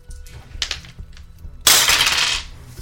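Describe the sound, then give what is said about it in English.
A few faint clicks, then dice rattle and clatter across a hard surface in one loud, bright burst lasting under a second before settling, rolled to see how much damage an arrow hit does. No one speaks. “Let's go ahead and roll and see how much damage it does.”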